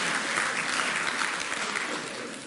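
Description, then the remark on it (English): A crowd applauds a joke about ribeye steak, a dense, even wash of many hands clapping at once that holds strong throughout before easing slightly at the end. “They clapped for the meat joke.”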